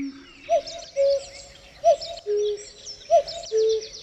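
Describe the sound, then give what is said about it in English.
A recorded cuckoo, used in a musician's album track, calls three times in a steady rhythm, each call a clear two-note 'cuck-oo' with a higher short note and a lower held one, over a soft hiss of outdoor ambience. “It's from his album and it's called ….”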